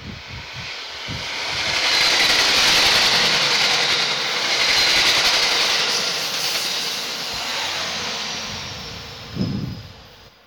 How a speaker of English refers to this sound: Train!